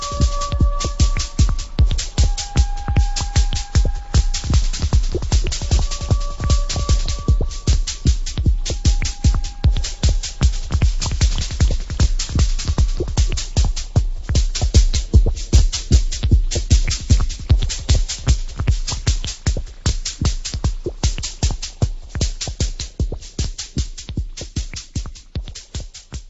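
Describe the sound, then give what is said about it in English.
Early electronic proto-techno track, produced while developing Dance for Noah, with a fast, steady pulsing beat that drives the whole piece, overlaid at first with short held synthesizer tones before settling into dense, throbbing repetition. “A track produced by her while developing Dance for Noah is a precursor to what we would now call techno.”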